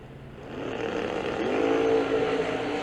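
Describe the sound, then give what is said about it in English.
Race car engines roar loudly, the pitch climbing steadily as two cars, Charlton in the left lane and Cancellar in the right, launch and accelerate down the racetrack in a $1 million final round, a sustained droning rumble with no talking. “Getting ready to go down the racetrack.”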